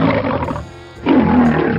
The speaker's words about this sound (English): At the time, MGM was one of the biggest movie studios around, and famously, they had a sonic logo that featured a roaring lion. Here's the first one with sound, from 1928. This roar was made by a lion named Jackie.